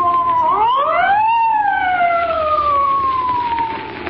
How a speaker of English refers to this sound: there's a police car coming up.